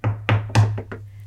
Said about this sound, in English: So knock on the door.